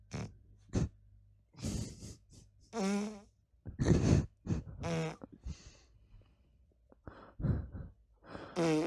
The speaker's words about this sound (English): Short compilation of some really big farts.